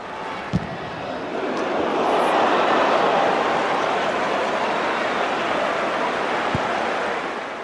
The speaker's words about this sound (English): There's no commentary. The crowd barely reacts. Nope. But it was an absolute belter, and there's enough audio there. You can hear the corner kick being taken. You can hear the ball.